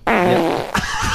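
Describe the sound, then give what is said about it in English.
A loud fart, long and buzzy with a wavering pitch, breaking into a short sputtering burst at the end. No one speaks. “A woman doesn't fart; she whispers through her panty.”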